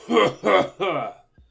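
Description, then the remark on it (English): A voice imitates coughing: three quick, rough, voiced coughs in a row, fairly loud, with no speech around them. “She's been sick for a month now, just coughing.”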